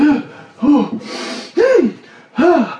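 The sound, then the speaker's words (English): A sneeze during a game of pool, just as the player was about to take a shot: a series of sharp, rising voiced gasps with a breathy, hissing burst in the middle, loud and fairly abrupt, with no speech around it. “Oh, I sneezed just as I was about to, and I missed my shot.”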